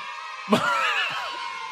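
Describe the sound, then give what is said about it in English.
A sudden burst of children screaming and cheering, many high voices overlapping in a loud, sustained wave that carries on steadily after the initial outburst. “Can I hear those children scream one more time?”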